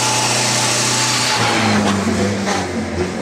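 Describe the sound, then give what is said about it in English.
A vintage 1929 Bugatti Type 40 Grand Sport car engine runs loud, its steady buzzing drone shifting pitch partway through as the revs change, with no voices over it. “The car I'm featuring today, the 1929 Bugatti Type 40 Grand Sport.”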